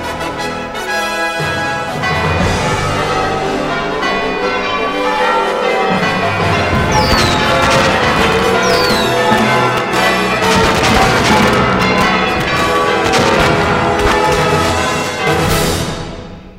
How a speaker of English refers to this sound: Hey, Vac, could you ring the doorbell? I've got my hands full with this basket of pizza muffins. Oh, my! I love ringing doorbells!